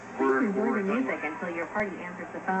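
A pop song with a sung vocal plays steadily as the answer phone message of a cell phone's voicemail, called during a live TV show, sounding thin and tinny as if heard through a phone line, with the music running continuously at moderate loudness.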